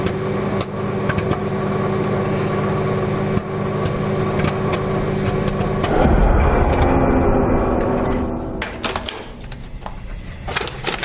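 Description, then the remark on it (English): Popcorn pops inside a humming microwave, with sharp irregular cracks scattered over a steady electrical drone. The popping grows faster and denser toward the end. “I think you just heard the popcorn popping.”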